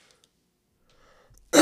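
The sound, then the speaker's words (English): A single sharp, loud cough bursts out at the very end, after a near-silent stretch with only faint breathy rustling. “Oh, sorry for that cough.”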